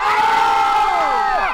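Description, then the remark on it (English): A group of hikers on an elevated hill, halfway through a hike, shout together in one long, loud, sustained yell that lasts over a second, the voices sliding down in pitch as it trails off at the end. “They stop to admire the beautiful view and to yell together in a collective release of stress.”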